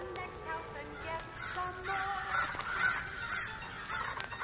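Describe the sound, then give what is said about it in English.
Crows caw repeatedly at a rubbish heap, four or five harsh calls in an uneven series, over a steady low outdoor rumble. “Oh, those pesky crows again, over at the rubbish heap.”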